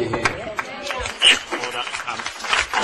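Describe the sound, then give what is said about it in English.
A burst of applause from the public gallery at a Senate committee hearing on a bill, a dense patter of many hands clapping for about three seconds at a fairly steady level, with a murmur of voices mixed in. “I'll ask witnesses and people in the gallery to just keep order as best we can, and there's no need for applause and the like.”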